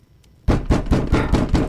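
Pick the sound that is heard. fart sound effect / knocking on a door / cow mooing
knocking on a door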